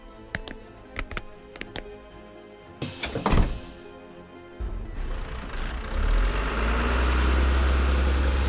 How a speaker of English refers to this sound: Look, there's a bus in front of the station. They run all the way through town, so it's sure to take us back to our neighborhood. This is great! Hurry, before it leaves! The side door's opening.